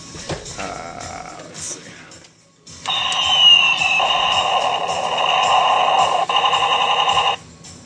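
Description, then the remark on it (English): A tinny electronic toy cannon sound effect from the lights-and-sounds feature of a toy's side cannons plays in two bursts: a short crackly chirping, a brief pause, then a louder, sustained buzzing tone lasting several seconds before cutting off abruptly. “It does have lights and sounds for the cannons on the side.”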